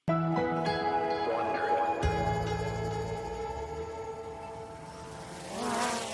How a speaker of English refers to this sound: A small drone is flying over a sunny Brooklyn street. The middle of the day in New York City is usually loud and bustling, but not these days. In this new normal we're living in, Brooklyn is eerily quiet.